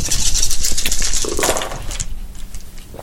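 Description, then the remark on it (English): A handful of dice, rolled for a medical knowledge skill check in a tabletop game, rattle and clatter in a quick, dense burst of sharp clicks for about two seconds, then a few faint scattered taps as they settle. “With this expert knowledge, and let's roll.”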